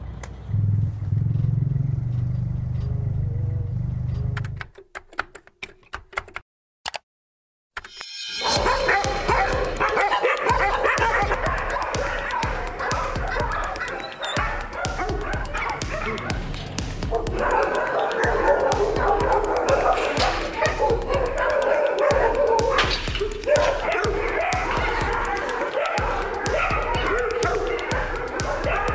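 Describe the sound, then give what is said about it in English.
A female dog barks and whimpers repeatedly at an animal shelter in Cairo, amid a busy, noisy environment full of other dogs' yips and clatter, with a low hum at the start before the commotion begins. “There are only a few animal shelters in Cairo, so this dog was one of the lucky ones.”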